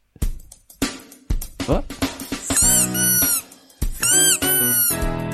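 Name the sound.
squeaky toy sound effect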